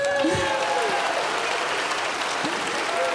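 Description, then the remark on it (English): A church audience claps steadily for the teachers of its mission project, a dense wash of many hands with no clear individual beats, moderately loud throughout, with faint murmuring voices mixed in. “Now we can clap.”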